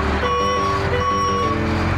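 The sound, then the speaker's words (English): Two steady electronic reversing beeps from a garbage truck taking away the bins sound over a low, constant diesel engine rumble, fairly loud, with no voices. “Or the dump truck takes away the bins.”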